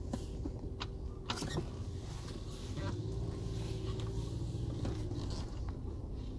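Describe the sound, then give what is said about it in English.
A low, steady car rumble with scattered sharp cracks and pops as tires roll over acorns dropped by a gigantic oak tree, probably 100 years old. The crunches are irregular and fairly crisp, with a few louder snaps standing out. “This oak is probably 100 years old, and it's dropping a shitload of acorns that I just drived over with a crunch.”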